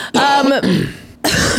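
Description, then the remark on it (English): A few harsh coughs in quick succession, loud and raspy, with a brief pause before a final rough cough, from someone getting over an illness; no talking. “So sorry, by the way, for the coughing.”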